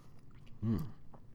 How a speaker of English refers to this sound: Excuse me, coffee sip.